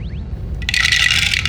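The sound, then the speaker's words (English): Dice clatter and rattle down through a Staggering Dragon dice tower: a few quick clicks, then about a second of dense, bright tumbling that stops abruptly. No one speaks. “It's a really nice dice flow. It's very really nice, is. Very nice, clean.”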